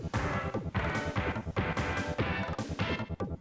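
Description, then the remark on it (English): Punchy synthesizer orchestra hits stab repeatedly in a driving rhythm, loud and bright, layered over a thumping bass groove with no voices. “If you look on like a synthesizer keyboard, I think that would be called an orchestra hit.”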